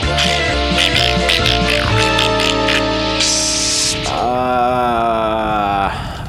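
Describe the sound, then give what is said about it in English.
Cartoonish sound effects over a steady musical backing: a stylized dog noise, then a short, sharp cat-like hiss, followed by a wavering, warbling tone that fades out. “Okay, I know their second one was supposed to be their cat hissing, but, you know, that's a cinch.”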